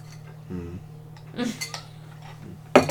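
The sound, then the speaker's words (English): Glasses clink together in a toast: a couple of bright, ringing taps, followed by a sharper clatter near the end, over a steady low hum and brief murmurs. “Cheers to us spontaneously.”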